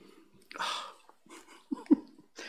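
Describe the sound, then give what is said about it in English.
A female dog breathes heavily in snuffly bursts, then lets out two short, high whimpers before the panting picks up again. No one speaks. “And now I'm covered in hair and dog goo.”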